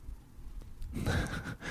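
A person yawns, a drawn-out breathy exhale with a faint voiced moan that swells after a brief quiet stretch, with no talking.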